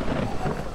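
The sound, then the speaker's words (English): A brief burst of thunderstorm ambience: a low, steady rumbling wash of wind and thunder, fairly loud and sustained, with no voices. “There is a storm coming.”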